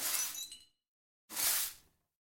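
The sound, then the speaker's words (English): Two bright, crashing glass impacts separated by a short silence, each with a ringing, hollow metallic reverb tail: a trash can's reverb applied to the glass impacts. Loud, no voices. “And then, of course, it's, as I mentioned, that's the reverb from a trash can applied to just another glass impact.”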